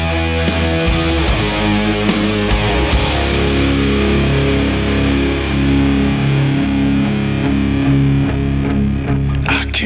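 A slow, heavy metal song driven by thick, distorted guitars playing sustained low chords, loud and dense throughout, with sharp drum hits early on and no vocals yet.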